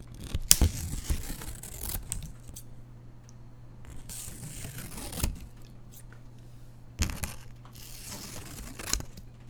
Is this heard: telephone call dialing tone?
no